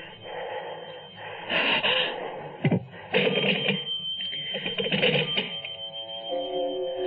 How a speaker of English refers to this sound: But perhaps this time it was Chris or Laura calling home for some reason. Why be frightened of a silly telephone?